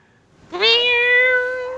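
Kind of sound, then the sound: animal, cat meowing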